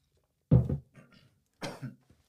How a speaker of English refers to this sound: Let me clear my throat.